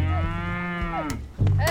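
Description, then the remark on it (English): Cattle mooing loudly, a long drawn-out low bellow followed by a second moo starting near the end, with no talking. “Yeah, there's cattle drives, glaciers, encounters with wild beasts.”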